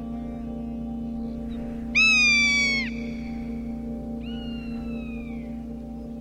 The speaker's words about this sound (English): The plains and the prairies, wide open spaces where the wind blows free, where there are few hills or elevated perches, where the rough-legged hawk goes hunting.